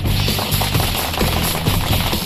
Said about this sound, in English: Nice little golf clap there.